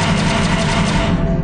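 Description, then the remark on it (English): Loud, dense blaster fire sounds throughout, a rapid stream of overlapping zaps over a heavy low rumble, with no speech. “You hear like a blaster go off.”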